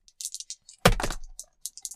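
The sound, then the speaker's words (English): Dice rattle in quick, light clicks, then hit a hard surface with a loud thud and skitter briefly before a few more small clicks, rolled during a game and landing on a 4. Clear, with no talking. “Roll the fucking dice, guy.”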